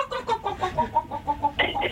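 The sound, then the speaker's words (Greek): A person on Antenna Radio acts like a chicken for 20 seconds, imitating clucking with a rapid, rhythmic series of short, nasal clucks, about a dozen bursts in two seconds, fairly loud, rising into a squawkier tone near the end. “να ενεργήσει σαν κοτόπουλο για 20 δευτερόλεπτα.”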